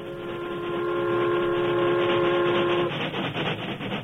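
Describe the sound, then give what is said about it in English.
The whistle of a special train boarded at Cascade blows one long, loud, steady, chord-like blast for about three seconds, then cuts off, leaving a dense rumbling background of the moving train. “Henry Blair, riding his hand car, reached Cascade in time to board the special train.”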